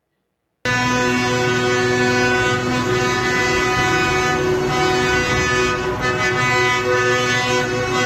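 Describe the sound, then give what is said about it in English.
Loud vehicle horns blare continuously for several seconds at a protest in Germany, many overlapping tones forming a steady, droning wall of honking with a slight rise and fall in intensity. No voices are heard. “Honk, honk, Andrew. Honk, honk.”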